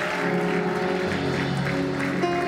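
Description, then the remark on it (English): A church audience claps for their pastor steadily in a dense, continuous wash of many hands, with sustained musical tones running underneath throughout. “I thought you would stand and even clap.”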